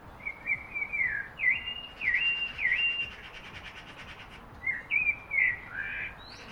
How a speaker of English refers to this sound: But the bird I really want to talk about is my local blackbird, which frequented the garden. Reason being, it had a very particular and peculiar song, which I managed to record earlier.